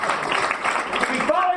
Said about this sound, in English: Give him a round of applause and thank him for being here. Come on! He's got better things to do on a Tuesday night.